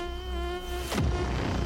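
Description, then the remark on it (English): A steady, droning insect buzz hums alone, then the insect zooms past the listener with a quick swooping drop in pitch before the buzzing carries on. “Is it a bee?”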